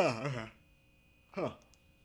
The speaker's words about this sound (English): Great way to end the news with a yawn.